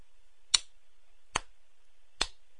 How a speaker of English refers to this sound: A slow clap. That was a slow clap.